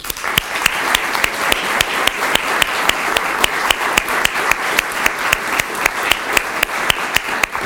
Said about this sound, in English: So this concludes our program. I'd like to give one final round of applause for all of today's award recipients.